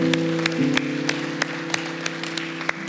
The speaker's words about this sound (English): Can we give these 5 individuals who raised their hand a huge round of applause? Yeah.